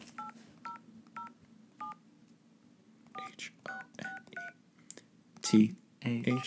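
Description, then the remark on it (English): A string of clear touch-tone keypad beeps as a phone number is dialed, about a dozen short dual-tone presses at an uneven pace, followed by a burst of voices near the end. “We'll call the phone number again.”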